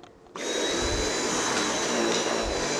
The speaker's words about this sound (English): I'm in the bedroom and I have my vacuum, I have my paper towels, I have like a little duster, and I'm gonna get started.